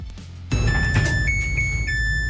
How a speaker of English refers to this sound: But there is one sound above all the other sounds in my house that is just nails on a chalkboard to me. And it is my washer and dryer.